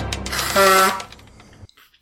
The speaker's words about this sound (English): That brings us right back into the show. That's kind of like the commercial break buzzer. Like, welcome back to the show, folks.